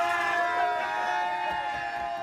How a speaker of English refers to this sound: when Borjan boarded the bus after beating the Americans, his teammates had plenty to cheer about.